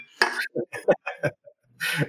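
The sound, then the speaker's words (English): A few light clinks of glasses knocked together in a toast for a small celebration, mixed with clattering tableware and a voice speaking briefly around them. “Cheers. Cheers to you. Oh, yeah, I got glasses.”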